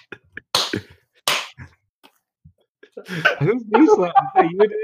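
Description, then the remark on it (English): Two hard, sharp knee slaps ring out loud, about a second apart, followed by a quiet pause and then animated voices talking and laughing. “Those are the hardest knee slaps I've ever heard.”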